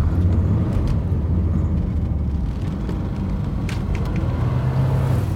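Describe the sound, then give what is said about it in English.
Steady low engine rumble and road noise of a car driving upstate from New York City toward Dutchess County, continuous, with a faint hum rising briefly near the end. “It was time for me to drive upstate to take a look.”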